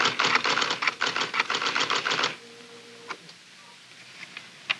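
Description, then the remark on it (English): A school secretary typing on a typewriter: a burst of fast, steady keystrokes clatters for about two seconds, then stops, leaving a faint hum and a few isolated clicks. No one speaks. “The school secretary types newsletters, reports, programs, talks to parents, and helps teachers and students in many ways.”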